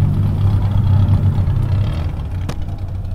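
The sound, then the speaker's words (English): Souped-up car engines rumble loudly, a deep, steady idle with slight revving swells, broken once by a brief sharp click near the end, as hundreds of cars gather in a big grassy lot on the outskirts of San Juan, Puerto Rico, a little before nightfall. “A little before nightfall, I drove to the outskirts of San Juan, to a big grassy lot where hundreds of people were showing up in cars with souped up engines.”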